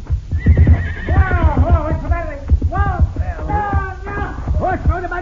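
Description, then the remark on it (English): A horse neighs loudly and repeatedly after being hit with a slingshot, its shrill, wavering whinnies rising and falling, while hooves clip-clop in a steady low rhythm underneath. “Pancho, hit your horse with a slingshot, Bandito.”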